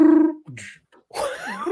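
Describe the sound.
A voice mimics a dramatic music sting: a held, droning hum, a short pause, then a loud, rough, swooping vocal blast, alone, with no other sounds.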